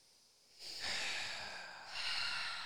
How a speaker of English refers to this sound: I'm just breathing through this.